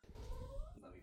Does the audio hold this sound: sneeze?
no